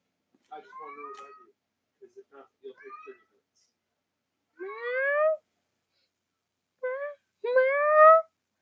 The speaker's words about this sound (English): Why is the cat meowing so loud?